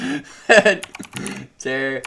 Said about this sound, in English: I got a new keyboard and it's mechanical and it's much louder than my old one.